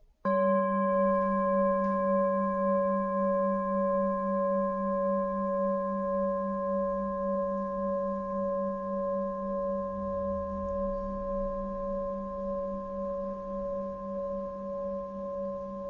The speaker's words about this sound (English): Because in the movement of the breath is the same movement of the present moment that we can find in the sound of the bell. It's the same.